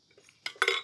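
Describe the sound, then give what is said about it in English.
A full water bottle being handled: a soft shuffle, then two sharp, bright clattering knocks in quick succession, the second louder and ringing briefly with a hard, clinking edge. “It's anyway, a full water bottle. It's heavy.”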